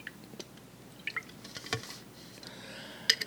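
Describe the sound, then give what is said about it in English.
Quiet handling of a water bottle: a few small clicks and a soft crackle as it opens, then wet slurping sips with faint drips, no talking. “One of my guilty pleasures is, as I open up this water, this is what it has to do with this. So let me take a sip.”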